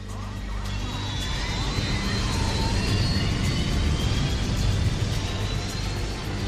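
A loud, steady jet engine roar fills the whole stretch, a dense rumbling wash with a high whine riding on top, holding at full power without letting up.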